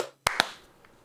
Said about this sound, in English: Then we'll do a clap sync in 3, 2, 1.